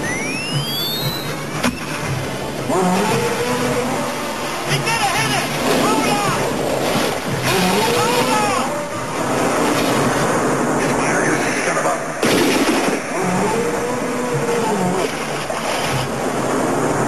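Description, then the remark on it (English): Loud, continuous churning and splashing water with repeated deep, drawn-out bellowing roars rising and falling over it, as a shark in a film scene comes out of the water and roars after an electrical device in its mouth is triggered. “If you stick something in their mouth that gives, you know, electrocutes them, don't you know that they jump out of the water and they roar?”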